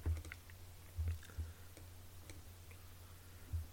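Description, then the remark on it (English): Several quiet, sharp clicks of a computer button being pressed to quick heal in a game come at irregular intervals, with a low hum underneath and no voices. “and you take 18 damage, which I can quickly heal by clicking the quick heal button.”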